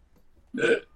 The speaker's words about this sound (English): I keep burping. Had a big dinner.